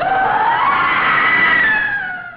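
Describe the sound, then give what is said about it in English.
A loud, piercing shriek holds steady for about two seconds, high-pitched and harmonic with a slight upward bend, then fades a little at the end. No one speaks. “You hear a horrifying shriek.”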